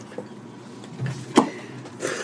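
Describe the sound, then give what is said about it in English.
A freezer door swings shut and locks with a single solid thump and latch click, preceded by a low scraping rumble and followed by a soft hiss, with no voices. “Was that the freezer door?”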